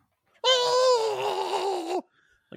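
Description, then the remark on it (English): A single loud, sustained male yell from a movie scene introducing Ryuk, by Nat Wolf, lasting about a second and a half, high and strained with a slight waver, dipping in pitch as it cuts off, followed by a brief faint tap. “So, but then you get that wonderful yell, that Nat Wolf.”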